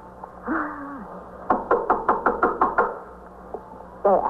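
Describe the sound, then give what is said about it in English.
A rapid series of about eight firm knocks on a wooden door, evenly spaced, preceded and followed by brief voices murmuring in the background. “All right, you better knock on the door.”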